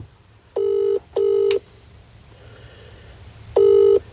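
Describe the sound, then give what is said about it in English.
A WhatsApp outgoing call ringing tone: two short steady buzzy tone bursts back to back, a pause, then the pattern starting again. Clear and fairly loud, with no talking. “Oh, it's ringing.”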